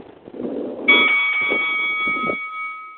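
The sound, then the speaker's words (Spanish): A single bell strike rings out with a sharp onset, leaving a bright, steady metallic tone that hangs for about two seconds and slowly fades, over a low rumble of background noise. “Smoke al sonido de la campana.”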